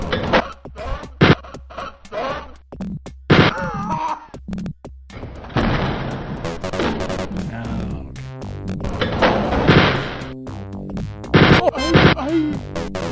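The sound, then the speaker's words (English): Audio from the video game Wolfenstein 3D: screaming voices, some in German, mixed with doors unlatching; sharp clunks and metallic clicks strike repeatedly between bursts of loud, strained shouting, with a cluttered, uneven sound balance. “Lots of screaming and screaming in German. Lots of doors unlatching.”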